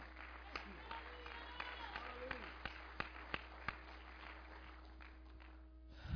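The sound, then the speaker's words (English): Scattered hand claps from an audience giving a hand to the music department, a handful of sharp, irregular slaps rising above a steady low hum and faint crowd murmur, never building into full applause. “So give them a hand clap and pray.”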